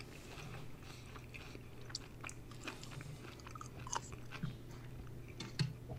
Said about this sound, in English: There's no better audio on an audio show than people chewing on nuggets.